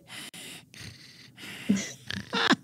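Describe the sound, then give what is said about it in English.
A voice imitates the heavy, sleepy breathing of a pregnant woman who has fallen asleep: a few noisy, airy breaths in a slow rhythm, moderately loud, ending in a couple of snorting inhales. “It's like a heavier breathing.”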